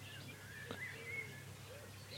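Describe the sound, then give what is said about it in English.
Faint nightingale song at dawn in Dorset: thin, high whistled phrases and a quick rising note over a steady low outdoor rumble, with no one speaking. “Nightingales at dawn in Dorset – magical, beautiful and moving”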